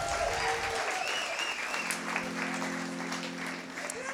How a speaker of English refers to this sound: And we also like to traditionally start this part of the show off with our attention focused on our musical storytellers tonight. Yes, clap, thank you.